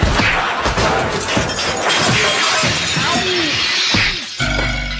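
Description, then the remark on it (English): Loud, dense smashing and shattering fill the whole stretch, with repeated heavy blows from an American toppy hammer shattering Hitler's jackboots in a chaotic barrage before a final crash. “And I'll use my American toppy hammer to shatter his jack boots.”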